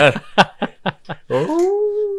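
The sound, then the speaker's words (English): A dog lets out a quick run of five or six sharp, yipping barks, then breaks into a long, drawn-out howl that rises and holds steady, fairly loud. “Is that your dog?”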